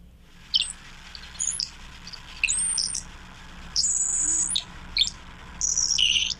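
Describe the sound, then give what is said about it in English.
A saltmarsh sparrow sings a series of thin, wheezy, high-pitched buzzes and hisses, irregularly spaced, over a low steady background rumble, in a salt marsh at the edge of the ocean with wind blowing and waves lapping. “Hey, we have the sound of a salt marsh sparrow here.”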